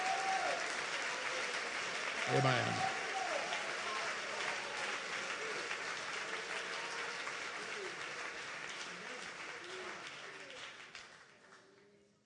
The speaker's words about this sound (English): Oh, let's clap our hands and praise Him together.